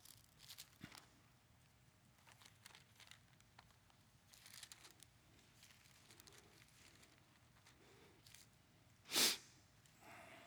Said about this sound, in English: That wasn't a tear. That was just me sniffing.